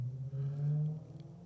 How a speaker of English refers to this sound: I was just waiting for that car to go by.